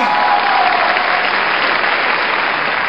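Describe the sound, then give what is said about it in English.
A studio audience of the show Goodnight bursts into loud, sustained applause as the host is introduced, a dense wash of clapping hands that holds steady throughout with no one speaking over it. “Wow, now that's a great crowd right there”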